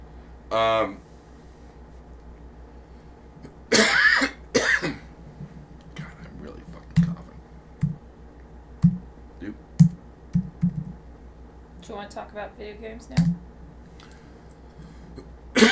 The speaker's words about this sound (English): Talk about video games now? When I stop coughing, yeah.